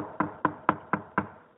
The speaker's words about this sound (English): He says, well, I'm just going to wait right here outside the door, and I'm going to knock.